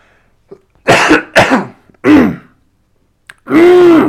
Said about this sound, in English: Yeah, that was the most obnoxious throat clearing that I think I know about.